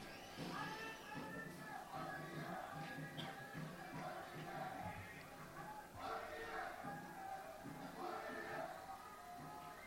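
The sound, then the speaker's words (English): A large crowd of thousands of protesters gathered in support of journalists makes a dense, steady roar of many overlapping voices, with shouts and chant-like swells rising above the mass at a constant loud level for the whole stretch. “There was a huge crowd that came down. I'll play you a bit of that.”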